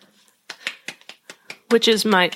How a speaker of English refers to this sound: Also, it's the person doing this clapping. Yeah. It's definitely not me.